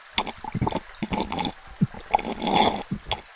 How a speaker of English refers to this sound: Oh, forget this. Who am I trying to impress with all this pouring nonsense? The Queen? Straight from the bottle it is.